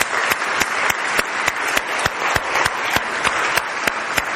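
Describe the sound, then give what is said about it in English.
A church audience applauds a woman standing up during a service, steadily, a dense wash of many hands clapping, with a few louder, evenly spaced claps cutting through in a quick regular rhythm. No one speaks over it. “Just stand up and let's give her a round of applause today.”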